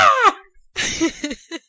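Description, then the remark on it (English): A person imitates a goat's bleat: a short, high, wavering cry that slides downward, followed by a raspy, quavering stretch that breaks into a few choppy bursts. “I've been working on my goat impressions on my off time.”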